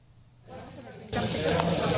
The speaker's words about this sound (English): Belt fish are rolled into flowers and sizzle in the pan. Eat them while they're hot.